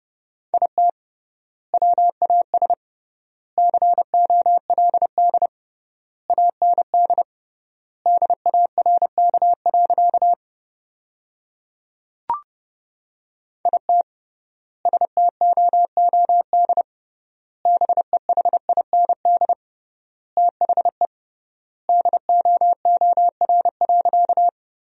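Morse code keyed at 30 wpm: a single steady mid-pitched tone pulsing in quick dots and dashes, grouped into words separated by long silent gaps, with one sharp click midway and no voices.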